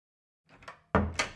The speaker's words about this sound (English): Just step into my bedroom there and close the door, would you?